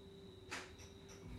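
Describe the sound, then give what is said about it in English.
Faint, steady high-pitched cricket chirping drones outside a house, continuous, with a brief soft rustle partway through and no voices. “There's really loud crickets outside your house.”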